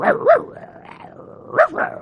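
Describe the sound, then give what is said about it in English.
A wolf attacking a sheep snarls and growls, with loud harsh barking bursts at the start and again near the end and a rough, lower growl rumbling between them. There is no talking. “And as this wolf came by, suddenly they attacked one of the sheep.”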